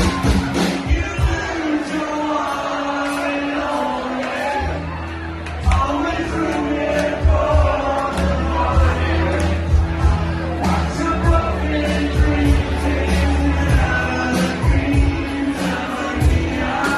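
A live country song plays loudly and steadily while a large concert crowd sings along, their voices blending with the band, with scattered shouts and whoops rising from the audience.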